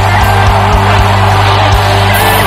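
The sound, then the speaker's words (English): A large audience shouts and screams together at the preacher's call, in a loud, sustained roar of many voices, with overlapping yells and whoops. “If you can shout, the blessing is upon your head. Come on, scream.”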